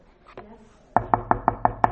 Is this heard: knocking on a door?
yes